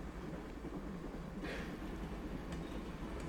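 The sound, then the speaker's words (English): A freight train rumbles along steadily with a deep, continuous low roar, a brief hissing whoosh partway through and faint metallic clicks, heard from on top of the train at night, with no one talking. “On top of a freight train.”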